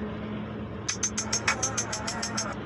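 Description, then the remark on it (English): A train rumbles past with a steady low drone, and after a moment a quick, regular series of sharp clacks sets in, repeating about a dozen times over the rumble. No one speaks. “And now a train is coming by.”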